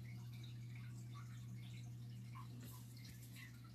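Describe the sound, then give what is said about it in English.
Faint, steady rush of running water with scattered small drips and splashes, over a constant low electrical hum. No voices, just the continuous watery noise throughout. “Is that why I'm hearing rushing water noises?”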